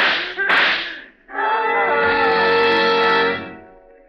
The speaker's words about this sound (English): What was that? I heard a scream. It's downstairs.